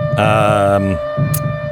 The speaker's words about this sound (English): And, see, the air sirens have gone on.